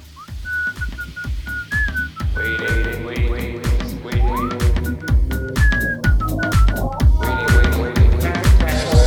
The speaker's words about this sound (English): It'll, depending on what you were thinking, it might be the new intro song. Yeah, maybe. Yeah. Lots of whistling.